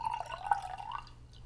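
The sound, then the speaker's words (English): Liquid pours in a steady, gurgling stream into a glass, its tone rising slightly as it fills before tapering off, over a faint low hum. No one speaks. “I hope we get the sound of the I'm really hoping that everybody could hear that.”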